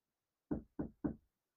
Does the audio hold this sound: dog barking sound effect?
no